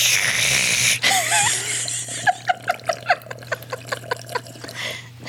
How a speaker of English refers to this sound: For the next minute, I can just drink water, I guess.